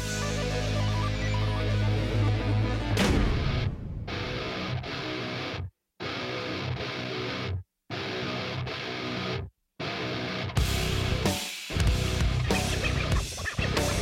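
Loud, dense metal music gives way to a stretch of choppy record scratching, with rapid stuttering bursts broken by several abrupt silent gaps before the full band crashes back in.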